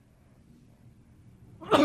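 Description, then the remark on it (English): After a stretch of quiet low hum, a single sudden, loud sneeze bursts out right at the end, cut off abruptly. “Oh, bless me. Bless you.”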